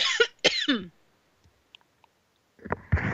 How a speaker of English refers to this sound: I think I need a cough button on my computer.